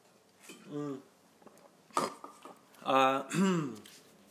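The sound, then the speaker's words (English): Someone takes a drink while glass and cutlery clink a few times, sharp bright taps mixed with short voiced hums and breathy sounds, without clear words. “I'm going to wet my whistle again.”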